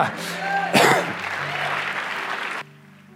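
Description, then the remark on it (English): A crowd bursts into sustained applause, dense and steady clapping with a few voices calling out, then it cuts off abruptly, leaving a quiet hum. “And that deserves an applause.”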